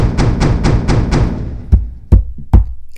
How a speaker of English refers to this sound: The whole house rattled as the knocker came down on the front door.